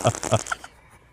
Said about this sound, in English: So I hit fart number 2 and it's like.